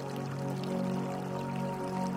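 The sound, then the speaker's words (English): River water flows over rocks, rushing steadily and continuously at an even level, with a soft sustained tonal hum running underneath. “The flowing river creates a steady rhythm that calms and soothes your mind.”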